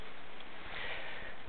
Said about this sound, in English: I'm going to break a preaching rule here. I'm going to blow my nose. It'll be better than hearing me sniffle the whole time.